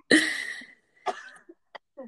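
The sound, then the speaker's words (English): A loud, harsh cough from a person who is a little under the weather and trying to choke it back, followed by a weaker second cough and a few short throaty catches, with no talking. “I'm a little under the weather, and so I'm trying to choke back a cough.”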